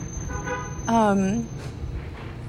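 A car horn honks once, loud and steady for about half a second, after a fainter horn-like tone, over a constant rumble of passing road traffic.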